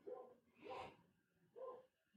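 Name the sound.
dog making a noise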